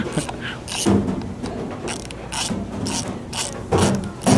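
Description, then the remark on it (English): A ratchet wrench clicks through about five quick tightening strokes while a leak in a ham brining machine is being fixed, each a short burst of rapid metallic clicks with brief pauses between, moderately loud, with no one talking. “He's fixing a leak in the brining machine, which is used to prepare hams, a key step in the artisanal process”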